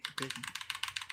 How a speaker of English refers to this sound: But you have any closing remarks with your clicky keys there?